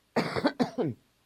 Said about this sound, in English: I'm going to cough for a minute. Excuse me.